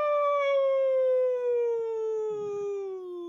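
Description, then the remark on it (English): A person imitates a wolf howl: one long, steady vocal tone that slowly slides downward in pitch for about three seconds, with no talking around it. “I'm howling away.”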